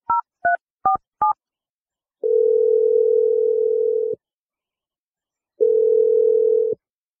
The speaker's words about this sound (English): All right, let's just dial Kelsie's number. Here we go, man.